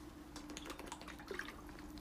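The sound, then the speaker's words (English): Quiet sipping of water: a series of small wet clicks and soft slurps over about two seconds, with no talking. “But the one thing, sorry guys, I just need to take a drink of water here real fast.”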